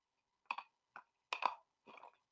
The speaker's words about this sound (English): Excuse me, I had to take a drink of my water.